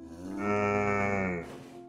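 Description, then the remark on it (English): A single long cow moo, steady and droning with a rich harmonic tone, rising in strength then fading out after about a second and a half, heard clearly and alone. “Once upon a time, in a lush green meadow, speckled with daisies and buttercups, there lived a cow named Millie. Millie was known throughout the meadow as the melancholy moo, because she always seemed a bit grumpy and rarely smiled.”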